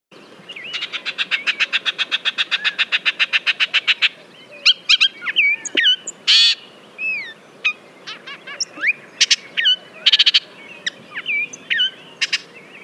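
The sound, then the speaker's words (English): A loud, clear Bullock's oriole song on an April morning in the Phoenix Valley: a rapid run of rattling, evenly spaced chatter notes, followed by varied whistled phrases, slurred upward and downward notes, and sharp chirps with no voices. “What’s That Bird?: Bullock’s Oriole”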